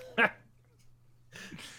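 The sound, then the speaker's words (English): A single sharp bark from a dog in a wheat field, short, followed after a brief pause by a person making breathy vocal sounds. “There's a dog in that wheat field. Did you hear it? It was a dog.”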